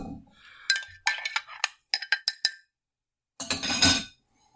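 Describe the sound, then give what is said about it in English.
Ice clinks against a glass as a drink is stirred: a quick irregular run of bright taps, a pause, then a brief denser rattle before it falls quiet. “You might want to put some ice in your glass first before you add the”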